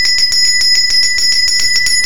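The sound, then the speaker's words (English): A bicycle bell rung rapidly and repeatedly, bright metallic dings in a quick steady rhythm, loud, with no voices. “Do you want to ring the bell?”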